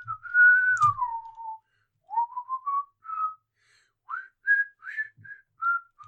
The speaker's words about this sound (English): I'll whistle us a tune as we walk.